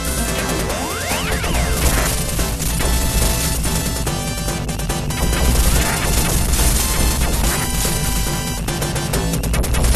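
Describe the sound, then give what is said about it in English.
A dense, continuous barrage of booming, bass-heavy video game explosions and crashes, loud, rumbling without pause over a busy layer of synthetic effects, from a game in which players ride in little mini tanks. No one speaks. “Those base heavy explosions as you're, but they're like little mini tanks too, because like your upper body sort of hanging out of them the whole time.”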